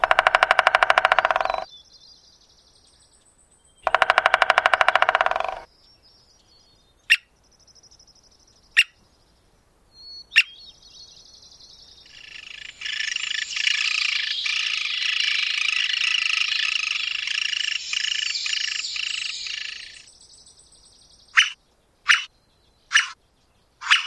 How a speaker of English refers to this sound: These birds prefer dead trees and coniferous forests and have a broad range across North America. Martin Stewart recorded the drums and squeaks of this American three-toed woodpecker for ….